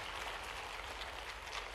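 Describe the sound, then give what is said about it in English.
A crowd claps steadily as an offering of praise to God, a dense patter of many hands blending into a continuous wash of applause at a fairly constant level, with no voices standing out. “Come on, somebody give a little clap offering of praise to our God.”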